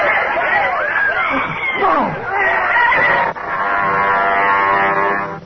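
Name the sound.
agitated crowd commotion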